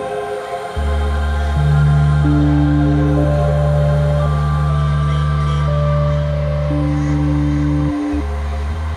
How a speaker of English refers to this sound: The first tone quality you'll hear is just a triangular wave, unmodulated. And this way it sounds just like a cheap little organ.